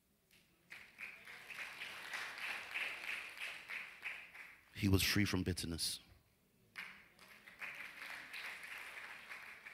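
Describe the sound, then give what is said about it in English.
A church audience claps during a sermon in a steady, dense wash of applause that pauses briefly while a man speaks a short line, then picks back up and continues to the end. “You don't have to clap every time.”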